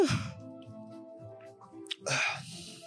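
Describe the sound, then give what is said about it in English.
Someone yawns: a breathy intake drawn out into a low, wavering voiced groan, then a rush of air as it ends. “Sorry to yawn.”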